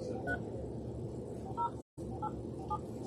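telephone keypad dialing tones

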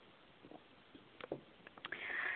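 sipping water

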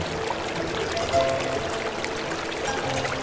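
river water flowing

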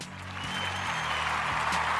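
applause sound effect

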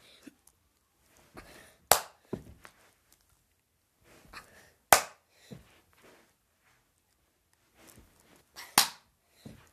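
hand clapping

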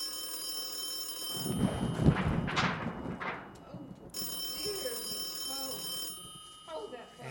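telephone ringing

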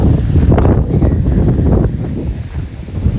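wind blowing across microphone

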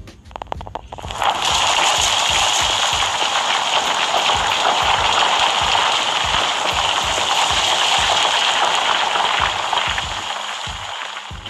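heavy rain pouring

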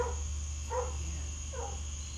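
dog barking

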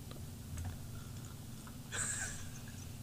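sipping a drink

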